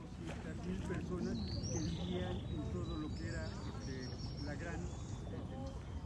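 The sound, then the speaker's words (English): Several birds call and chirp in the Xochimilco wetland over a busy outdoor backdrop, their high whistles rising and falling above a steady low rumble and faint indistinct murmuring. “This place is full of birds.”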